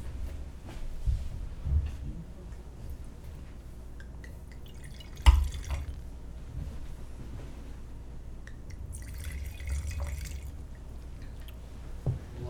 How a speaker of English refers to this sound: Well, I'll pour the next wine here. We can chat about it.